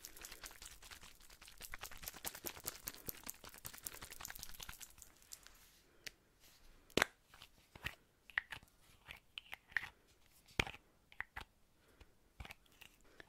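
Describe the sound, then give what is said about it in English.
A bottle of oil control makeup fixing spray is shaken in a rapid, steady rattle for about five seconds, then gives way to scattered sharp clicks and taps. No one speaks. “I have an oil control fixing spray for you”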